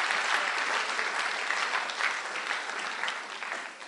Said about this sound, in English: You miss a good place to clap. You miss a good place to clap.